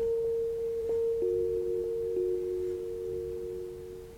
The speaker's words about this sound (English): When he switched it on, it reeled in a high pitch and then settled into a hum.